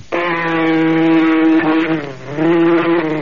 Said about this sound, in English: Now that you got rid of the mosquito... Darn mosquito really bit me.